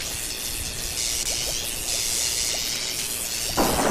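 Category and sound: nature, thunderstorm with rolling thunder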